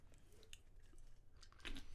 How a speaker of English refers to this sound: let me take a sip here.